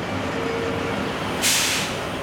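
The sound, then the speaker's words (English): A loud hiss of air brakes bursts out over the steady low rumble of idling garbage trucks, a convoy arriving packed with trash from all over Palm Beach County, a sharp release of pressure lasting about half a second. “This musical piece starts with a convoy of trucks packed with trash from all over Palm Beach County.”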